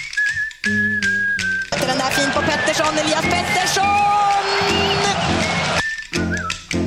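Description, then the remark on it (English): A man whistles a short tune in clear, sustained notes, then a loud, busy wash of crowd noise and clatter swells over it before the whistling returns briefly at the end. “I don't know, but it sounds to me like that whistling man with the bone.”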